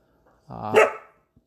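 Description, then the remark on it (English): A single loud dog bark right into the microphone, rough and throaty, lasting about half a second, followed by silence; the dog is barking as a guard dog at the fridge creaking. “thinks he's a guard dog, and that was the fridge creaking. But he barked right into the mic, so sorry about everybody's spike in audio.”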